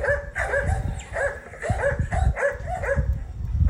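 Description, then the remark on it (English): Two big Harlequin Great Danes, Hither and Yonder, bark over and over in a quick, overlapping string, loud, with deep resonant woofs filling the whole stretch and no talking. “You're probably wondering about the barking dogs.”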